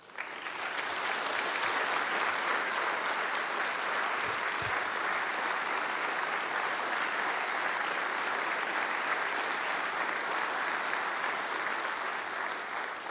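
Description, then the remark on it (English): Sustained applause from a large audience recognizing veterans and service members who stand up, a dense, steady wash of clapping that starts quickly and holds at full strength for the whole stretch, with no talking over it. “If you are a veteran or a service member, would you stand up right now so we can recognize you and give you a round of applause?”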